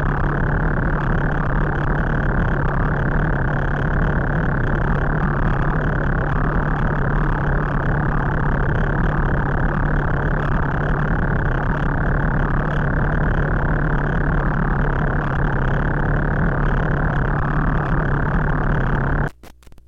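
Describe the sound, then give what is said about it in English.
A loud, steady triple-FM modular synthesizer drone patch, run through a Chopping Kinky module, with a dense, gritty buzzing texture and a low, sustained pitch holds unchanged for about twenty seconds, then cuts off abruptly. No one speaks. “Triple FM Drone and Ambient Patch”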